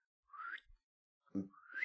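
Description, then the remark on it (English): Two airy, breathy human whistles, each sliding upward in pitch, with a brief low thump between them; fairly quiet, no talking. “I keep hearing this whistle.”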